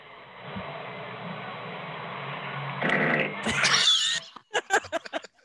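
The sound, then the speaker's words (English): A long, low, raspy fart rumbles steadily for a few seconds, swells into a louder, harsher blast, then breaks into a handful of short sputtering bursts. No one talks over it. “That's a solid fart.”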